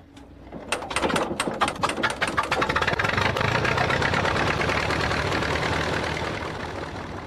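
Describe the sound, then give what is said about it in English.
A vintage Allis-Chalmers tractor engine is cranked at a tractor show in Florida and sputters to life, early uneven pops settling into a steady, loud chugging idle, with no voices. “Cranking up a vintage Alice Chalmers tractor was probably tougher than getting these two lovebirds together.”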